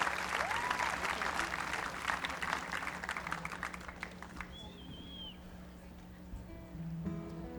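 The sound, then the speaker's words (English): An audience at a folk festival applauds a singer and fiddle player with dense, steady clapping that fades over several seconds, a few whoops rising above it, while a low hum and faint murmur linger underneath as the clapping thins out. “Give it up for ….”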